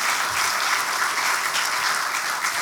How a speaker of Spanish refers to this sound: Dale un fuerte aplauso a nuestro Señor Jesucristo.